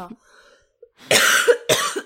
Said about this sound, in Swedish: Ja, ah, så jag kommer hosta igenom mig den här, det här avsnittet. För att jag har ju blivit sjuk.